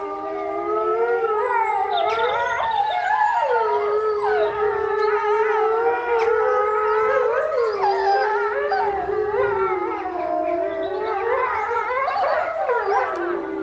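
wolves howling

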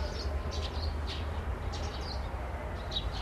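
birds chirping

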